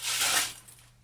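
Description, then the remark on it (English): A single rustling, crinkly sound of crepe paper being pulled out of a brown cardboard packing box and crumpled, a brief swish that fades out within a second; no talking. “It's got crepe paper inside of it. We can get that out.”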